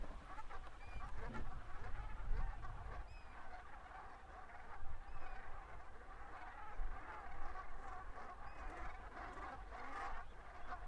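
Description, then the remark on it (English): A flock of elegant black and white geese, watched from a car near the president's house, calls softly and continuously, many overlapping harmonious honks forming a steady, gentle chatter over a low background rumble. “A short distance from the president's house, I now sat in the car with binoculars and stared at the elegant black and white geese, whose calls are softer and more harmonious than the grey-lag goose, a common nesting bird in Iceland.”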